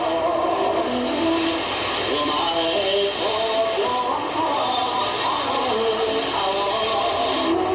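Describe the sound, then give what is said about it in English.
Many slot machines playing at once, heard while walking past a slot machine emporium on the Ginza on a windy Saturday night: a steady, loud wash of overlapping electronic jingles and beeping tones that step up and down in pitch over a constant buzzing din, with no clear pauses. “Those are slot machines you're hearing.”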